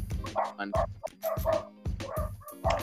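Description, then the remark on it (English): Dogs bark repeatedly, a quick series of sharp, fairly loud woofs mixed with higher yips, coming in uneven bursts with short gaps between them. “My dogs are being rude.”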